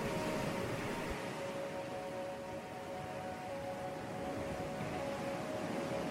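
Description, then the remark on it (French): Ocean waves wash steadily onto a beach at sunset in a constant, even roar with no distinct breaks, while a faint steady hum runs underneath. No one speaks. “Il vous reste alors encore quelques minutes pour profiter du bruit des vagues et des couleurs flamboyantes qu'offre la nature.”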